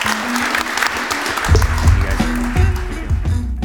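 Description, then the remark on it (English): An audience at the Future of Digital Currency Conference bursts into sustained applause for a panel, a dense wash of many hands clapping that swells and stays loud throughout, with some low rumble underneath and no speech. “Please join me in giving our distinguished panel a hand of applause.”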